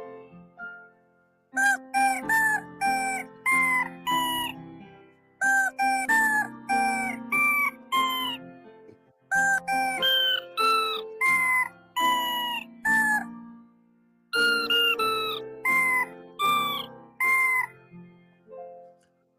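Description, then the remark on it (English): Chicken clucks pitched into the Happy Birthday melody, four clear phrases of short, bright notes with brief pauses between, loud with no talking over them. “Is it weird that I'm impressed with the chicken's ability to sing happy birthday better than me?”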